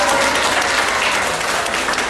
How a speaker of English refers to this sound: Around us is a group of old folks, residents here at the aged care centre, maybe about 30 of them, 40 of them, all just watching and clapping along.